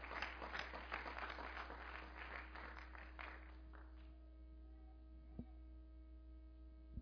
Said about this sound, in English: Right now, I pray that you're blessed as you're seated in Jesus' name. Give him a hand clap if you're seated.